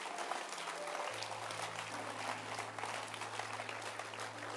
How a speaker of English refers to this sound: So God, you can clap your hands.